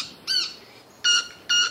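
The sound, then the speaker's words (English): Three short, ringing buzzy notes from a male manakin stridulating with its wings, the first alone and the last two closer together, each clear and fairly loud against a quiet background with no talking. “Yeah, it's called stridulation. So this is a cricket-winged mannequin would be a perfectly good name for this bird.”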